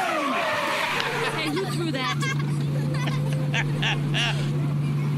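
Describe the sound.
A bus engine drones steadily from inside the vehicle while a crowd of children chatter and shout over it, their voices overlapping in a constant, lively babble.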